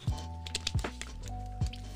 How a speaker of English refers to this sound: Excuse me, I take a sip of my water.